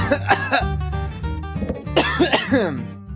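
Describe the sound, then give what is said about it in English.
Loud coughing and throat clearing, several rough bursts in a row, with a brief hum of voice mixed in between the harsh clearing sounds, as a person gets their voice ready. “I feel like I have to cough to, like, get my voice ready.”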